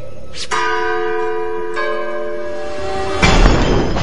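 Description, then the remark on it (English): A pull-cord bell at a manor clangs twice with a ringing, sustained tone that lingers, then a falling stone gargoyle breaks in with a sudden loud crash that rumbles to the end. “Give the bell a yank, will you?”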